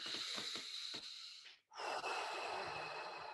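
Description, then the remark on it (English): One slow, deep breath demonstrating a calming breathing technique: a long airy inhale, a brief pause, then a steady, drawn-out exhale. Calm, controlled and fairly loud, with no talking. “And now if I do a breathing technique, I'm breathing like this.”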